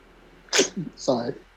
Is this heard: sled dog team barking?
no